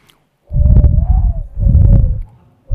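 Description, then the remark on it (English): A person whistles an imitation of a dove's call: two breathy, hooting phrases with a steady low tone, then the start of a third. No talking. “They flit around, and I've been practicing how to whistle like a dove. I'm going to try it here.”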